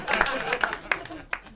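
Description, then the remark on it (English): Audience applause: a brief burst of scattered claps with a few sharper accents over a busy murmur of voices, tapering off toward the end. “No, you guys don't need to applaud get on that.”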